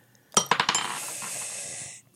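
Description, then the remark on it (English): Dice clatter onto a hard table with a few quick, sharp clicks, then settle into a steady, rattling roll that fades out after a couple of seconds. The roll needs 15 or higher and lands on 18. Fairly loud, with no talking. “Okay, go ahead and make this roll. I believe you need a 15 or higher for this.”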